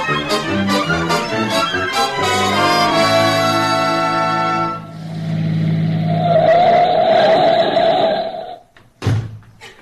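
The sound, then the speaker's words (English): A car engine revs up with rising, stepped pitch as it pulls away, then settles into a loud, steady roar of driving with tire noise before cutting off abruptly. No one speaks. “We'll jump in the car and be there in a few minutes.”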